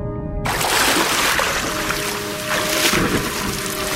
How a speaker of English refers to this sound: Upon reaching the stormy surface, he is slammed with the noise of pounding rain against his mask and crashing waves.